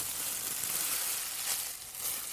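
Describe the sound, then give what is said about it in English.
A plastic bag crinkles and rustles steadily for a couple of seconds, a bright, crackly texture that stays fairly loud throughout, with a brief softening near the end and no voices. “Anyways, the next thing is a plastic bag.”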